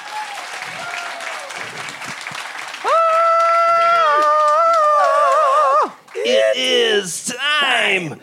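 An audience claps steadily for a guest who spoke about a an album, and a long, loud sustained whoop rises over the applause before breaking off, followed by more wavering cheers and shouts as the clapping continues.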